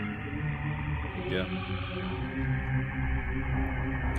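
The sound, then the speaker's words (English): Deep, chant-like humming drones steadily through a low, murky video game background music track, the voices sustained and continuous for the whole stretch with no speech over them. “It almost just sounds like some guy's going hum, hum, hum behind you.”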